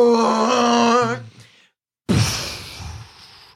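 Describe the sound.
A voice imitates the roar of a giant worm rearing backwards after missing its target: a loud, wavering, strained growl for about a second, a brief silence, then a harsh, rasping breathy blast that slowly fades.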